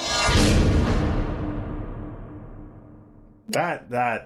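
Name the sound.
gong sound effect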